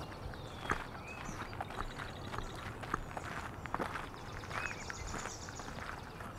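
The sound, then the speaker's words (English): Steady footsteps crunch at a walking pace along an outdoor path through a marsh, while birds chirp and trill faintly in the background. “Let's head down this path through the marsh here.”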